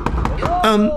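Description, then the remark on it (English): Three sharp knocks on a front door by two men in black suits, in quick, even succession and fairly loud, followed right away by a sustained, tonal voice-like sound. “Why are there two men in black suits with dark glasses at my door?”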